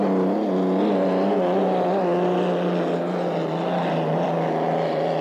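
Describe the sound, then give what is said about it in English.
A racing hydroplane's engine roars steadily and loudly during a race, with the Weisfields slamming out of the north turn while the Lincoln Thrift goes into it; a dense droning growl with layered harmonic whine that rises and falls slightly over five seconds, with no voices. “So, in other words, the Weisfields is slamming out of the north turn, while the Lincoln Thrift, as you look, is going into the north turn.”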